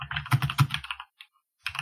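Rapid keystrokes clatter on a computer keyboard in a busy burst, then a brief pause with a single tap before the typing resumes. No one speaks.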